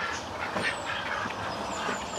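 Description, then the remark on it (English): Several ducks quack and chatter, a busy overlapping burst of nasal calls with no gaps, set against a steady outdoor background. “Look, there they are. You'll be able to hear them.”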